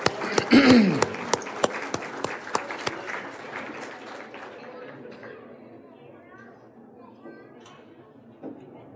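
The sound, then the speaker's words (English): A crowd at an event breaks into brisk applause for the planning and organizing committee and the food workers, with sharp claps and a brief whoop at the start, the clapping thinning and fading over several seconds into scattered murmuring chatter. “Come on, give them a round of applause, please.”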